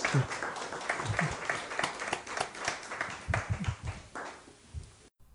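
An audience at a Whitechapel Society talk on the history of the Port of London breaks into steady, dense applause, many hands clapping at once in a continuous patter that holds for about five seconds before stopping abruptly.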